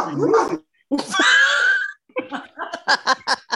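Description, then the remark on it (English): A dog barks and whines, a drawn-out howling yelp followed by a quick run of five or six sharp, high yips, fairly loud with no one talking. “We're going to come back to that because now Lindsay's dog is quiet now.”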